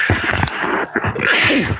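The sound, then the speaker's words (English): A person sneezes loudly, with a sharp, breathy burst followed by a second forceful sneeze a moment later. “Bless you.”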